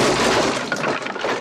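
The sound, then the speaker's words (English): A sharp, loud smash of an object being smashed against a wall, with a burst of shattering glass-like debris scattering and tinkling for over a second afterward. “And she smashes it against the wall above his head.”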